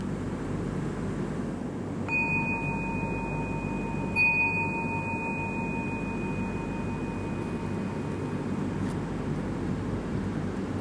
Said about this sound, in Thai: เสียงระฆังไม่ได้แปลว่าเลิกนั่งสมาธินะ